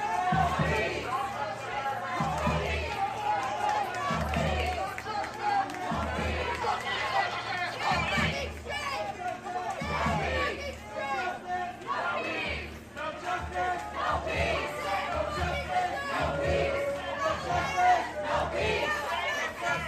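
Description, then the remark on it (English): A large protest crowd blocking the New York City subway chants "no justice, no peace" in loud, rhythmic unison, voices rising and falling in repeated bursts over a constant roar of babble, steady and dense throughout, with no clear pause. “So yes, you saw them protesting, saying no justice, no peace.”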